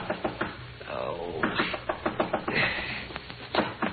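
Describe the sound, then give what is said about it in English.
Repeated sharp, insistent knocks on a hotel room door (room 500), landing in quick uneven bursts over a low murmuring background with some faint tonal sounds. “But just when you settle down to hibernate, the knocking starts.”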